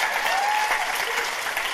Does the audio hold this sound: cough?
no